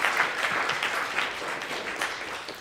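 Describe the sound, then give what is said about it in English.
An audience breaks into dense, steady applause with cheering for Muhammad Ali, a continuous crackling wash of many hands clapping that holds at an even loudness for the whole few seconds, with no talking. “How about a cheer for Muhammad Ali?”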